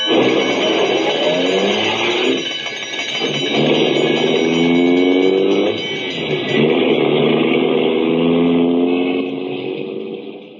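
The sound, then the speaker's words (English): A loud old ambulance engine revs hard, its pitch rising and falling in sweeping surges as the ambulance accelerates away on a call to 234 South Street, with a steady mechanical drone throughout and no voices. “We don't stop for no red lights.”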